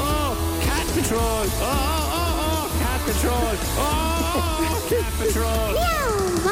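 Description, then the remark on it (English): A singing voice imitates a cat's meows with gliding, wavering notes over a full, loud musical backing with steady bass, repeating several times across the passage, in a 'Cat Patrol' song segment on the Red FM Breakfast radio show in Cork. “Cat Patrol, when your pussy's in trouble, just have a chat with a stray cat and the stray cat will tell the other cats. Meow.”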